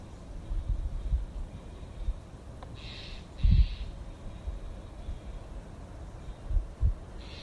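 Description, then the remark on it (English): Two brief bird calls sound in quick succession, faint against a quiet outdoor background with occasional low thumps and rumbles. “Feeling the air around us, that all the creatures, the birds we hear, the trees we feel around us, everything's breathing.”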